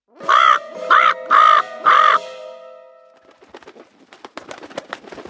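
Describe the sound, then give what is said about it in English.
A crow gives four loud, harsh caws in a steady, evenly spaced rhythm. Faint scattered clicking and rustling follow once the calling stops. “They see him perch upon an oak and listen to his dreadful croak.”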